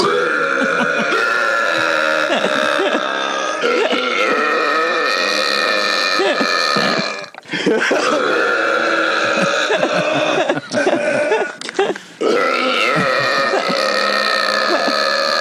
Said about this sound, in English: Oh, yeah. Dueling burps. It's pretty cool, right? It's really nice.